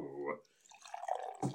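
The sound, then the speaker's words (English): A short voice gives way to liquid pouring into a glass, a steady trickling gurgle whose pitch rises slightly as it fills, ending with a brief louder burst of sound. “You don't want sure, you can pour some in there.”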